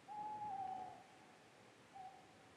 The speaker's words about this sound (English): And as I return back to the house after a Starbucks run, I step outside my car and I hear an owl.